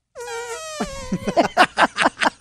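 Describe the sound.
Two people make mouth fart noises at the same time: a sustained buzzing, slightly falling tone gives way to a loud, sputtering run of about six rhythmic blats.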